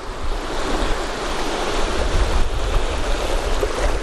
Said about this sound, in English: I'm just gonna try and get some of these waves. These waves are really good.